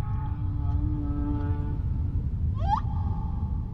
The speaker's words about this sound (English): The male humpback whale's song is one of the longest and most complex of any animal. A single call can last up to 30 minutes. Once it's over, the whale will start again, repeating the same song over and over. The song travels far underwater.